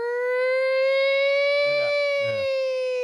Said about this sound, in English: To this day, you hear a siren like that, I'm just like, if there's mist with this siren, I'm fucking out.